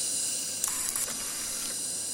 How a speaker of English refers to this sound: Doesn't sound like anything's in this one. That, or I can't hear it through the helmet. This one's hissing. Probably steam.